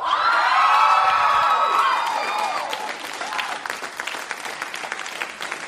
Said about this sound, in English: If you're in hype, I want you to, at the count of three, to stand up and yell louder than the kids did. I got no chant for you to yell. It's just simply yell. So stand and yell. One, two, three.